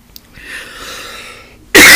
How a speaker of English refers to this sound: Shows it's natural because I'm coughing here.